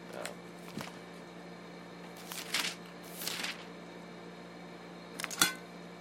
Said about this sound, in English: That was my pancakes. You can hear my plate. I'm still eating pancakes from Saturday. I made so many.